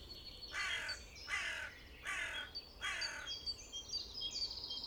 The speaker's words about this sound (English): And there's the wise old crow who carefully chooses her words.